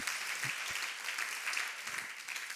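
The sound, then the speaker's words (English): During a sermon, a crowd claps their hands in a dense, steady wash of applause to show they believe and rejoice, many hands overlapping into a continuous bright roar with no clear individual beats, holding evenly throughout. “Clap your hands if you believe that and if you rejoice in that truth.”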